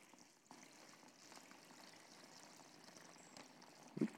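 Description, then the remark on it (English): Water pours steadily into a container with a soft, continuous splashing trickle lasting several seconds, fairly quiet, ending with a brief knock. “And as you can see, it holds the water.”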